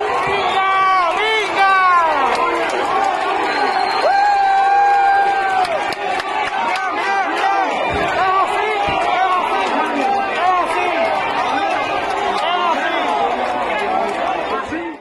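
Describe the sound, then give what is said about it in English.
A loud, dense crowd of Cuban protesters shouting and cheering as they flip a National Revolutionary Police car outside a local Communist Party office, many overlapping raised voices forming a continuous roar that holds steady throughout, with occasional louder yells breaking through. “Also, we have some footage of Cuban protesters flipping a National Revolutionary Police car.”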